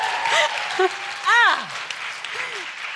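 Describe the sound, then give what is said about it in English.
A crowd gives a steady round of applause for a guest's new prosthetic leg, dense clapping filling the whole stretch, with a few whoops and cheering voices rising above it. “Round of applause.”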